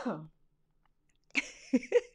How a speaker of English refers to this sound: Y'all, I was trying to hold that cough. See what I'm talking about?